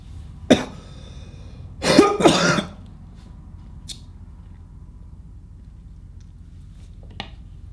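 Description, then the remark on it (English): A single sharp cough, then after a pause a harsh burst of two or three rapid, loud coughs, followed by quiet room tone with a couple of faint clicks. “Whenever I cough, it seems to peak.”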